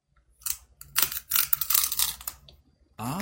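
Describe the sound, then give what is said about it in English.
Loud, crackly crunching of someone biting and chewing a crisp snack, in a quick irregular run of sharp bursts, followed by a short pause and then a voice starting to speak. “That is a hell of a crunch on that thing.”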